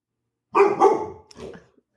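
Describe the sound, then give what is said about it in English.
A pet dog named Layla Brooklyn barks twice in quick succession, followed by a shorter, softer bark, fairly loud with a slightly muffled tone and no talking. “You guys hear my dog?”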